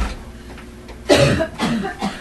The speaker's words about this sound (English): Are you belching? No, I really want to cough.